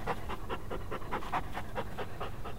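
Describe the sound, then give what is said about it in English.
A dog named Timbuktu, lying down and looking around, pants steadily in quick, rhythmic breaths, about four per second, fairly soft, with no voices. “And when my wife told me this, I looked over to where Timbuktu was laying, looking around and panting like he does.”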